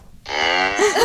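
cow mooing sound effect

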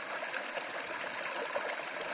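creek water flowing

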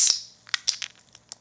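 beer can being opened

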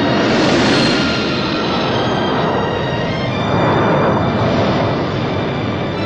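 aircraft engines

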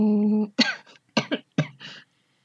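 cough

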